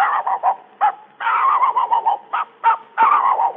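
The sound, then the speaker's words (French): A person imitates a dog barking with a rapid run of short, yappy barks in uneven bursts, some quick and clipped, others drawn out, fairly loud with no other sounds. “Mesdames et messieurs, voici les quelques cris d'animaux que j'ai pu retenir en faisant une visite au jardin des plantes. Voici d'abord le chien.”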